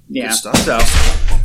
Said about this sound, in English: My chair just gave out on me.